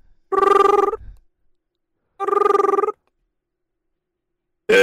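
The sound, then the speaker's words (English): A telephone rings in trilling electronic bursts, two full rings separated by a pause and a third just starting at the end; loud, with no voices. “Is anyone going to answer the phone?”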